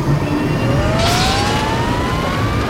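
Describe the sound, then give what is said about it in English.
Engines firing up: a loud, steady low rumble with a whining tone that climbs slowly in pitch throughout, plus a brief hissing rush partway through. No voices. “Fire up the engines!”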